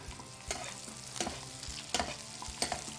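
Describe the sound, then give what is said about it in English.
Steady crackling sizzle of butter browning in a pan with duck, fresh thyme and rosemary, with a few sharper scraping or stirring strokes at irregular intervals and no voices. “So now what we're doing is we're browning the butter.”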